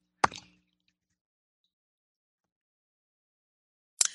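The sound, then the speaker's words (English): Someone takes a sip of tea from a cup: a short clink and slurp, then quiet, then another brief cup sound a few seconds later. No talking. “I'm going to have a sip of my tea here.”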